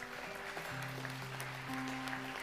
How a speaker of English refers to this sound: Come on, let's cheer these guys on.